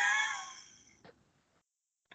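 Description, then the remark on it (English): A single drawn-out cat meow, clear, fading away over about a second, followed by quiet and a couple of faint soft knocks. “Oh, Cat.”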